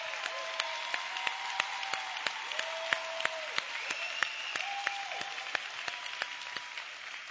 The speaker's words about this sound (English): Come on, give him a hand clap.